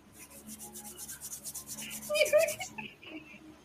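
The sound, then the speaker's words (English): A cricket chirps indoors, a rapid, high-pitched pulsing trill that runs steadily for a couple of seconds before cutting off, with a few faint squeaks and rustles near the end. “Where the fuck is this cricket noise thing fucking coming from?”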